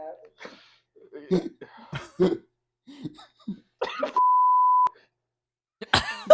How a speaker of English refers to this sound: Dude, the beeps are great.